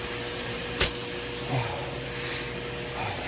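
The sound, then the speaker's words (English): A vacuum cleaner runs steadily, a loud, even whooshing roar with a short sharp knock early on and slight swells in pitch, with no voices. “Here's a man sucking himself off of the vacuum cleaner.”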